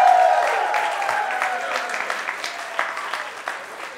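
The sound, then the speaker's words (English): Sustained applause from a large theater audience for three guests as they leave the theater, dense clapping with scattered sharper claps, gradually tapering slightly in loudness over a few seconds. “Thanks for doing one more round of applause for them as they make their way out of the theater.”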